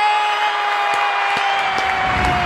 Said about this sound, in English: Yay! There he is. Welcome. Thank you, guys. Thank you guys so much. I love the applause. That's quite nice.